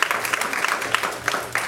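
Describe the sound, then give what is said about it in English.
An audience at a Christian sermon breaks into applause, a dense wash of many hands clapping at once with scattered sharper claps popping out, steady and moderately loud throughout. “So we can clap that up.”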